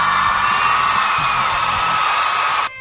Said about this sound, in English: And in case you didn't know, Sonic Phoenix actually completed Sonic 1 yesterday, so big round of applause for her.